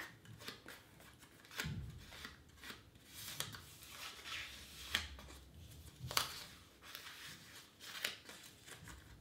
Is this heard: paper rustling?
yes